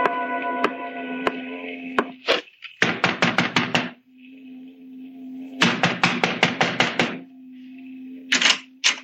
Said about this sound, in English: You knock too loud, Paul. You disturb our boss.